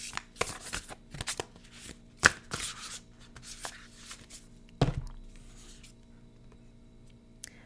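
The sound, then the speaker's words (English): Crisp shuffling of decks of cards before a card pull, with quick papery riffles and flutters in bursts, a few sharp taps of the deck, then settling into quiet rustling toward the end. No one speaks. “Let me shuffle up the decks a little bit.”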